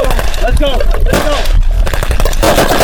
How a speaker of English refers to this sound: Culminated in a multinational live fire drill to retake territory from an enemy.